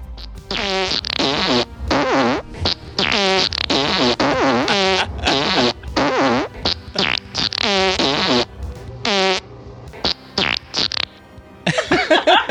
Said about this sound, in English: Wow. That was like a chorus. God, farts. Those are all farts I heard in real time and watched them being recorded.